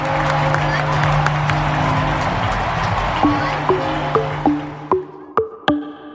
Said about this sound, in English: the crowd cheered, and the in-park Liberty Bell rang out to signal a Phillies home run.